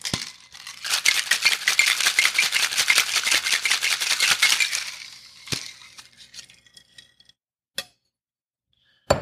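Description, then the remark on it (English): Ice rattles hard and fast inside a cocktail shaker as a cocktail with habanero shrub is given a hard shake for about five seconds, a dense, rhythmic clatter, followed by a few scattered clinks and knocks as the shaking stops. “Ice, of course. It'll be a shaking cocktail. I'm going to give this a nice hard shake.”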